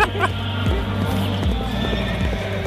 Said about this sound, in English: Woo. Hear that horse? Yeah.